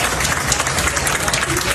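Steady, dense applause from relieved airline passengers after a plane diverted to Panama City and was landed safely by the co-pilot. A continuous patter of many hands clapping at once, fairly loud and unbroken for the whole moment.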